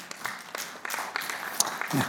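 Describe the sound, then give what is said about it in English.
Scattered applause from an audience for a person being born again, a loose patter of individual claps rising and thinning over a couple of seconds, with a brief low voice near the end. “You don't have to be hesitant to applaud about a person being born again.”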